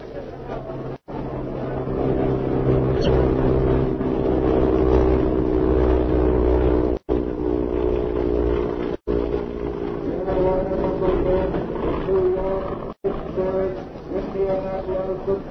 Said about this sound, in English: Leaving his plane in the hangar, he has walked down to the passenger terminal just as a swift airliner roars over the field and prepares to land.